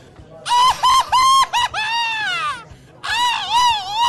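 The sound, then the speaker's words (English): A man shrieks in high, cat-like yowls, imitating a burned cartoon cat: a few quick choppy screeches, a long wavering wail, a brief pause, then another loud screech. “that's what the sound that Tom the cat made whenever he got, like, you know, burned by Jerry the Mouse”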